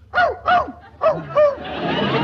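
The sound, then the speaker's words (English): A dog named Fletcher, hidden in a closet in a hotel room, barks four times in a quick, uneven, loud series, followed by a steady rushing noise as the barking stops. “Ah, just as I thought. You do have a dog in here. He's in that closet.”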